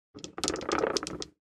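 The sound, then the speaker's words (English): Dice are rolled to decide who gives a recap. They rattle and clatter across a hard surface in a quick burst of sharp clicks lasting about a second, fairly loud, with no voices. “All right, so let's roll the dice, see who is recapping today.”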